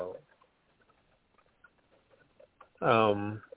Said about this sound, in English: You know what? Just because it's raining here, that's probably what it is. The rain. Oh. Yes, raining.